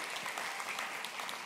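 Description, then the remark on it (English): A church audience applauding steadily for members who took up a pastoral challenge, a dense wash of many overlapping hand claps at an even, sustained loudness throughout, with no voices standing out. “So will you give it up for them one more time?”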